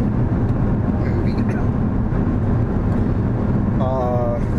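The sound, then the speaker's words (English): Steady, loud low rumble of road noise inside a car driving home, constant throughout, with a faint murmur of voices and a short high tonal whine near the end. “We're on the road home.”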